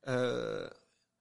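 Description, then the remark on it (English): A single voiced sneeze, strongly pitched and loud, held for a little under a second before cutting off, with no talking around it. “Bless you.”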